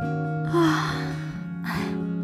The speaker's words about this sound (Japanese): 気が緩んだのか大きなあくびをした。